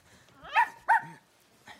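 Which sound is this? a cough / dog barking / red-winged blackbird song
dog barking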